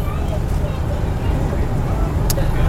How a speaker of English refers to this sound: Inside the bus.